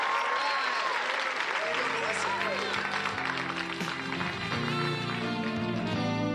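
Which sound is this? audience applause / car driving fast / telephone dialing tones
audience applause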